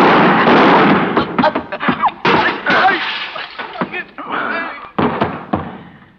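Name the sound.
gunshot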